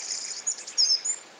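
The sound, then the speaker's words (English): Bright, high-pitched chirps and short whistled notes from songbirds in quick irregular bursts over a soft, hissy outdoor background with no voices, recorded at a house on top of a hill in the rural Eifel area of Germany. “And the bird song is just beautiful from the top of this lovely hill.”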